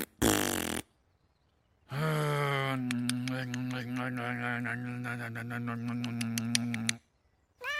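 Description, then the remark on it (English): A cat meows: one short, bright cry, then after a pause a long, drawn-out low yowl that rasps and crackles for several seconds before cutting off. “Stupid cat.”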